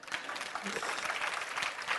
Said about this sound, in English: Go on, clap your hands.